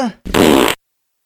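A loud, close fart sounds alone, a half-second wet, sputtering blast preceded by a brief tonal squeak, then silence.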